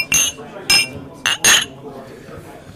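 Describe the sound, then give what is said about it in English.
Glasses clink together in a toast, about four bright, ringing chinks in quick, uneven succession, fairly loud, with soft background voices murmuring between them. “We have to empty this bottle because it's not possible for us to bring it back home”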